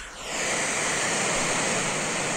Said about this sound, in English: All right. Here's brown noise.